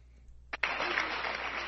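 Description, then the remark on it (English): Audience applause from a video bursts in after a brief lull, a dense, steady wash of clapping that holds at a moderate level to the end, with no voices over it. “I see the applause.”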